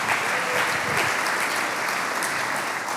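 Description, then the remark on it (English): A church audience claps steadily, dense, even applause filling the full three seconds at a fairly loud, constant level, with no talking over it. “Come on, let's give that a clap.”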